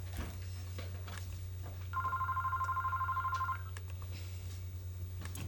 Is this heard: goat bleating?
no